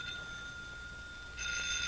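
A telephone rings with a steady, tonal electronic trill that swells brighter and a bit louder near the end. It sounds fairly quiet, with no one talking.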